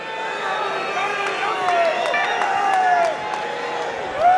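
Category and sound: crowd, crowd chanting and cheering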